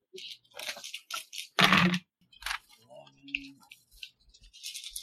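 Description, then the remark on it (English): Strength dice rattle and clatter in a series of sharp, crunchy bursts during a tabletop role-playing game, with one loud tumble midway, then lighter clicks as they settle; a faint voice murmurs briefly underneath. “Get those strength dice ready.”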